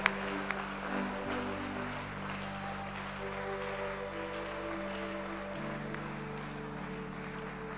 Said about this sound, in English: Thank you very much. Keep clapping. That's right.